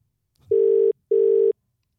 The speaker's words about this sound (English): So let's see dial if we the numbers. Get her on the phone. We'll give her a call.